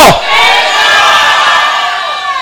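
A large crowd shouts the word "favor" together in a loud, sustained, energetic roar of many voices, lasting a couple of seconds before fading slightly.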